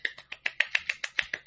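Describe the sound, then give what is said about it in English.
A quick, steady run of about eleven sharp, bright finger snaps, evenly spaced and fairly quiet, with no talking over them. “Oh, I snapped my fingers.”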